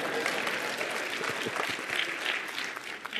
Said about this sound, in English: Now, go ahead and clap if you want to.